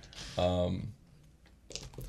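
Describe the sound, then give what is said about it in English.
Dice rattle and clatter in a short burst of sharp clicks after a brief vocal sound, with a few scattered knocks as they settle; the roll decides evens or odds and comes up 10. “I'm a roll dice here.”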